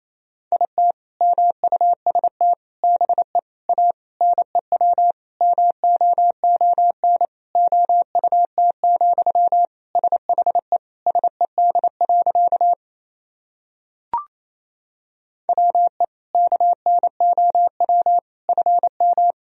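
Fast Morse code at 28 words per minute, sending sentences built from the top 500 words and abbreviations, in a single steady, mid-high beeping tone keyed in quick runs of dots and dashes, with a brief pause and faint click before the sending resumes. No voices.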